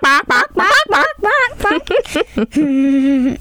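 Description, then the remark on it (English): A person vocally imitates a chicken with a rapid series of short, loud clucking bursts, then ends on one long drawn-out squawk. “That's not a chicken sound. Have I taught you nothing? This is a chicken sound.”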